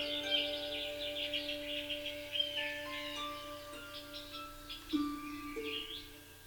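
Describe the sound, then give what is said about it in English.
A robin sings a run of bright, warbling phrases with quick high notes, clear over a steady background hum, with no voices. “And Little Red Robin.”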